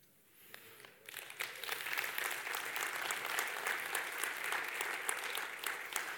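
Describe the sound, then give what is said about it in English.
A church audience breaks into sustained applause during a service, celebrating having paid off $400,000 of its mortgage in four years; a dense wash of many hands clapping that swells up after a brief quiet start and holds steady for several seconds. “Isn't it good to clap in a service where you're talking about money?”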